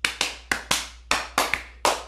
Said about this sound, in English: Please, a big round of applause for Mildred here.